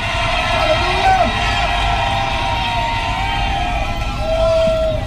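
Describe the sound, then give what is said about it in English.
A large crowd screams and shouts together in a sustained, loud roar of excited voices, with scattered higher yells and whoops rising above the dense wall of cheering throughout. “I need somebody to scream for seemingly no reason.”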